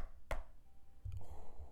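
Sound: knocking on a door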